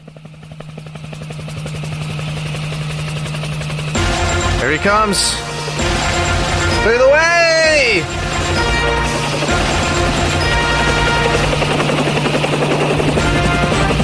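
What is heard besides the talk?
helicopter rotor sound effect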